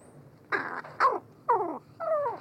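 A crow's soft courtship song, heard close: four short, throaty coos and rattling growls, spaced about half a second apart, some sliding downward in pitch, with no talking.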